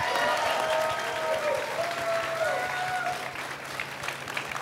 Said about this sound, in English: Thank you very much. A round of applause again, please.